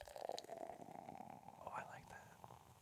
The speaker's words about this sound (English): I'm going to pour it by the mic, too. Into the mic, yeah. Yeah, pour it over the mic.